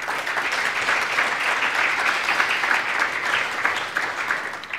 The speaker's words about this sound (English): But I will just say thanks very much to our panellists today. Can you give them a big, big round of applause?